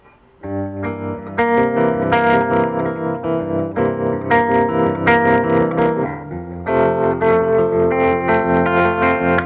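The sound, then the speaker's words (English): Slightly crunchy, somewhat out-of-tune electric guitar chords ring out through a Spring Tank spring reverb combined with a Flint reverb and tremolo, the sustained notes pulsing gently in volume, with a short pause before the playing resumes. “Can we hear the Spring Tank with sure. with the Flint? And the tremolo?”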